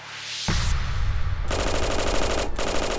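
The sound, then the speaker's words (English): Loud, sustained bursts of Thompson submachine gun fire, with rapid, evenly spaced shots rattling continuously for several seconds and no voices. Men posing as police officers open fire in a garage that housed gangster Bugs Moran's bootlegging operations. “these men pulled out their Thompson submachine guns.”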